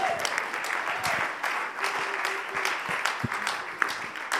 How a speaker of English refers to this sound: So, hey, we love you guys. Why don't we just cheer and celebrate as these guys go out?